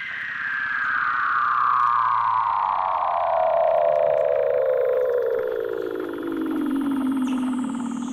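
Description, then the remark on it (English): A Weddell seal's eerie underwater call: one long, steady tone that glides smoothly downward in pitch for about eight seconds, buzzy with overtones and holding loud throughout, with no voices. “That's not a whale or a spaceship with laser beams. It's a seal. The Weddell seal lives around Antarctica and can grow quite large, up to 11.5 feet long or 3.5 meters.”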